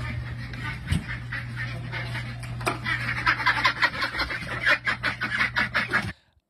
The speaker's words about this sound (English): And then just duck food and ducks just quacking up.